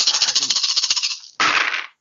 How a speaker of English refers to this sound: So do I reroll all the dice then? You reroll all the dice.